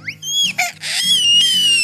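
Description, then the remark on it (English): A toddler lets out a shrill, piercing scream that holds a very high pitch for about two seconds, broken by a couple of brief catches, loud over a low background hum. “And I'm sure you can tell, yeah, like that's totally high-pitched break a glass scream.”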